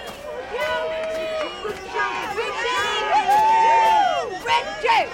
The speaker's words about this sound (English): I can't believe it. Everyone's cheering for him.